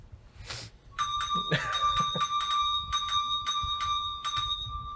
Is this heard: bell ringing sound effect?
yes